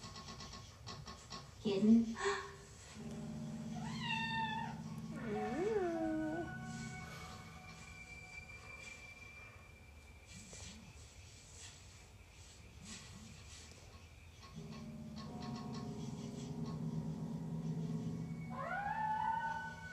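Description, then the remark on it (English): A kitten meows several times in thin, high, wavering cries, a cluster early on and another near the end, over a steady low rumbling hum in the background. “Kitten, I hear you, but I don't see you.”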